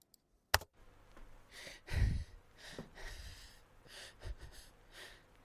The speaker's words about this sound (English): Quiet, scared breathing began as the song started. It continued through the whole intro up to where the singing was supposed to start, then past it for a few bars.